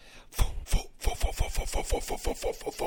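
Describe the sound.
A voice imitates a helicopter: two heavy thumps, then a steady, rapid chopping pulse of breathy, buzzing bursts that keeps going at an even, fairly loud level.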